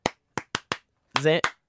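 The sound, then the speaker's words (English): Four sharp hand claps in a quick, slightly uneven rhythm, then a short burst of voice and one final crisp clap, a clapping signal used to get children's attention when teaching them AFL. “Like I clap and they've got a copy and that's how I get their attention.”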